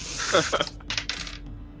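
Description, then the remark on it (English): A quick clatter of a player's lucky dice tumbling across a hard tabletop during a tabletop game's investigation check, a few sharp ticks followed by a short rattling roll that fades out, landing on a 3. It is fairly crisp, with no talking. “All right, my lucky dice that I just said never fails me that gave me a 3.”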